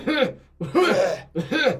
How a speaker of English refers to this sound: You can clear your throat if you want. I'll just get rid of it myself.